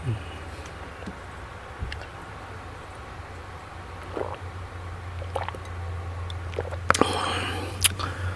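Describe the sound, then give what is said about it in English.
Quiet mouth sounds of someone sipping water: a few soft slurps, wet clicks and a swallow over a steady low background hum, with no one talking. “I had to take a sip of water before I go off on some of you people.”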